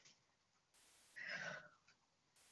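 A single yawn, a breathy inhale that swells into a short, drawn-out voiced tone sliding downward, then fades into quiet. No one speaks.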